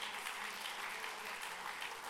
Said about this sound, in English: Now lift your voice with that hand clap and let's thank God for the promise of His word. Come on, let's lift Him up all over the place one more time.